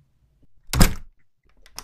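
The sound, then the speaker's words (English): A door is handled quietly, then shuts with one loud, heavy thud; a softer knock follows a moment later. No voices are heard. “Right through this door.”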